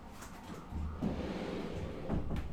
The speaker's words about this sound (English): We have a door here. We can shut it.